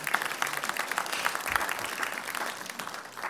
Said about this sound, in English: And you can clap and all that kind of stuff, too.